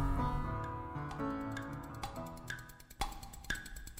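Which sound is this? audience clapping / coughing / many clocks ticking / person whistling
many clocks ticking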